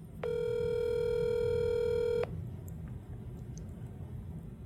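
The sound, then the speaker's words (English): A single steady ringback tone sounds for about two seconds as Chris Hansen calls a man's cell phone, then cuts off, leaving a low hiss of line noise. “Well, I recently obtained his cell phone number and I gave him a call.”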